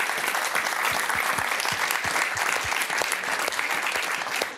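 Audience applause, a steady wash of many hands clapping at once, dense and fairly loud, holding evenly for several seconds with no voices standing out.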